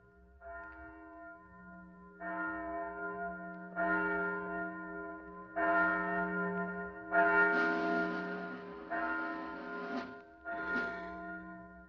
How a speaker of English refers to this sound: Listen. Do you hear something? Just a bell. Must be 11 o'clock.